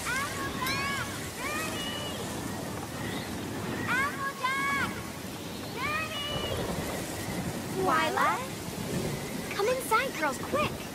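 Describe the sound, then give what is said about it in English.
Steady hissing rain and a rumbling thunderstorm fill the background, while voices and high, chirping vocal sounds come and go on top of the downpour throughout. The storm is in an animated scene where the pony characters Rarity and Applejack must find shelter together. “But then the storm gets too big for them to ignore, and so they really need to find shelter together.”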